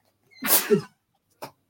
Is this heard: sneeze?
yes